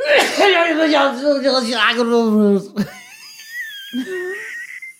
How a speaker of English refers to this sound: Can you cut that? That is horrendous. You absolute tit. That's such a big sneeze. No, you didn't need to do it that big though, did you?